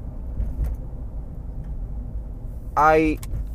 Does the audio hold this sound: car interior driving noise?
yes